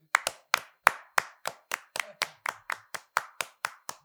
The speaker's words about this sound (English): Slow clap.